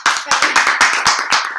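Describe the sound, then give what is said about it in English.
Several pairs of hands clap in a quick, uneven burst of applause, loud, a small group clapping together for under two seconds. “Clap we up. Celebrate our triumphs. Clap it up.”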